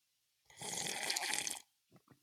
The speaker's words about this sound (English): And I'm trying to avoid that slurping part sound. Of it. I would like you to really exaggerate it though. All right, hold on. Here we go.